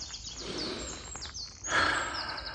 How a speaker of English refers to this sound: I've got birds chirping.